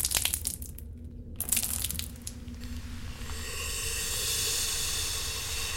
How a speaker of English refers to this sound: I hope you're ready for your bug spray bath. I'm opening the bottle.